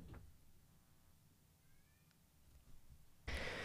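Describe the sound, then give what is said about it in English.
A cat in a hallway lets out a loud meow right at the end, cut off abruptly, after several seconds of quiet background hum with only a faint, brief whine partway through. “My fucking cat was in the fucking hallway.”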